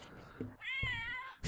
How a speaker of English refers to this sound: Did you hear that? Yeah, the box meows at you. That's cool.